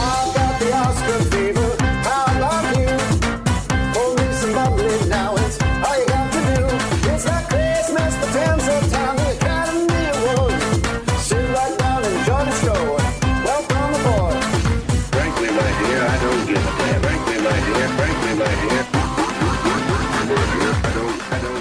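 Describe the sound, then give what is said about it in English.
A loud, steady On Cinema remix track, made for Tim and Greg for On Cinema, plays throughout, with a punchy repeating beat and layered melodic parts, and a shift in texture near the end; no one speaks. “That song you're listening to is the On Cinema remix I did for Tim and Greg for On Cinema.”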